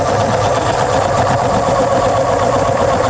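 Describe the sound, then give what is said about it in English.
A steady, loud motorized whir of an automatic pencil sharpener, running continuously with a fine buzzing grind and no pauses, with no voices. “It's a pencil sharpener. Pencil sharpener. An automatic pencil sharpener.”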